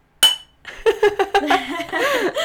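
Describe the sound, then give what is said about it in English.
A single bright clink of glasses in a toast at home rings out sharply and fades, then people laugh and chatter. “I'm going to cheers to that. Yes. A quick little cheers.”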